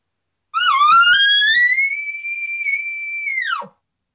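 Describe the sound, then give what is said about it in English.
A single imitated elk bugle, a locating call to get a bull elk to sound off: a loud, whistling tone that climbs from a low start to a high, sustained squeal for about three seconds, then breaks off into a short low grunt. “we'll do just kind of a location, kind of a bugle to see if we can get him to sound off.”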